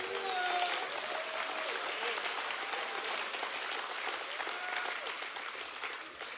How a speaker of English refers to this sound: Now we clap and all that